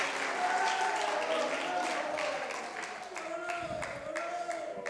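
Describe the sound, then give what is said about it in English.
An audience claps their hands in praise to the Lord, a dense, sustained wash of applause, with voices calling out and cheering beneath it. “Come on, not a golf clap, but somebody ought to clap your hands and give him praise.”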